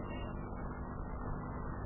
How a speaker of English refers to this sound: Well, here comes the professor's car. See the fox tail hanging from the radio antenna?